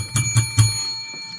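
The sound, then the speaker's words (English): A service bell dings three times in quick succession, each strike bright, with a clear metallic ring that lingers and fades after the last tap. No one speaks. “I got my service bell dinging.”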